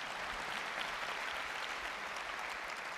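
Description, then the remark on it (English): A large crowd at a keynote presentation applauds new watchOS app features, a dense wash of many hands clapping at once, sustained at an even loudness throughout with no voices standing out. “You can clap, it's good.”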